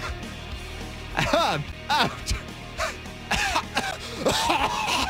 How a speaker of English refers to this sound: Uh-oh. That sounds like shortness of breath, dry cough. Woo!